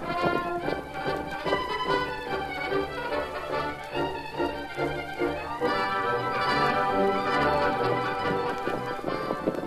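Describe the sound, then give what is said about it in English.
Galloping horse hooves beat in a quick, steady clip-clop rhythm beneath loud, sweeping orchestral music, continuing throughout with no one speaking. “To the north, Silver. Get him up, Scout.”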